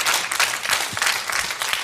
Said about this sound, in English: Yes. All right, that's a big clap. We'll do that.